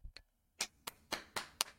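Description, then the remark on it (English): A person claps their hands as a round of applause for a football team's Super Bowl run and its win over Joe Burrow: two soft claps, a brief pause, then five sharp, crisp claps in a quick, steady rhythm. Nobody speaks. “I want to start off this by giving them a round of applause”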